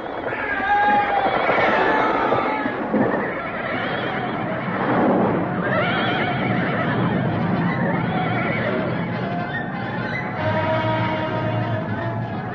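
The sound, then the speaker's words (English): Several horses neigh and whinny loudly, their cries overlapping within a dense, steady rumble of commotion that lasts throughout, with no clear hoofbeats standing out. “Gasping for breath, she ran before the horses, then...”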